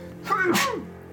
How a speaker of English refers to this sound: Gesundheit.